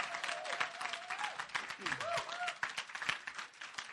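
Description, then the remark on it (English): A crowd bursts into sustained, dense applause with scattered cheers and voices shouting praise to God over it, filling the space loudly throughout without pause. “Would you just shout unto God and give him just a clap and a shout of praise?”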